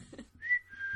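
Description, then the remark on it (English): A person whistles a short, steady high note that rises slightly and holds, clear, after a brief murmur of low background noise. “Ghost can't wait, whistle.”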